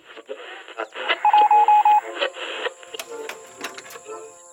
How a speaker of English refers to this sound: It seems we have a little radio interference from Thunder.